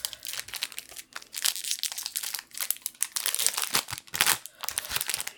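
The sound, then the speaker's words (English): Crinkly, rustling foil trading card packs being torn open and handled, a continuous bright crackle with sharp tearing bursts, no talking. “Well, let's just open our packs.”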